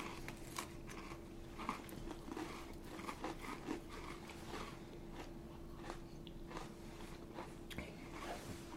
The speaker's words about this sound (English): No chewing in the mic.